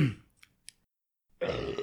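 A loud burp rumbles out after a short pause, following the tail of an earlier belch and a couple of faint clicks, with no talking.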